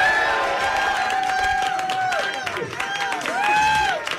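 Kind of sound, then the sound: crowd, audience cheering and applauding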